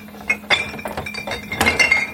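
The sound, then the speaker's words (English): Glass jars clink and knock together in a quick, irregular series of bright, ringing taps, with a couple of louder clatters as they are shifted around in a crowded fridge while someone digs out white wine vinegar. “which requires that I dig out some white wine vinegar. I have 14 million jars of stuff in the fridge.”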